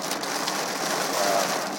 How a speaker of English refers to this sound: I'm going to get into some serious rain. Wow.